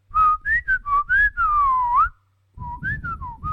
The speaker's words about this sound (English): I bet you Spotify has never had a podcast of mostly whistling in their life.